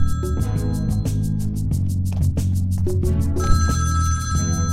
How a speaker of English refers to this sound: Then, the phone rings. All right, I'm coming.